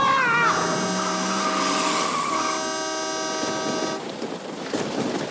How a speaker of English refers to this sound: Whoa, a big old diesel truck just came out of nowhere.